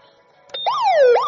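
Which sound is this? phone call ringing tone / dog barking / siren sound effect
siren sound effect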